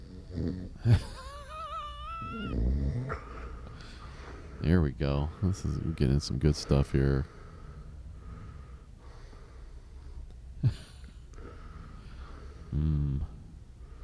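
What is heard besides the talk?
person snoring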